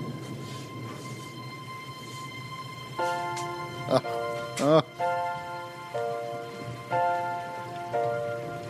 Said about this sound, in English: Dang it. Gee, I'm glad it's raining.